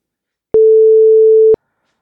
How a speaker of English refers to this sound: I'm just going to take a very short break, and I'll be back after the beep.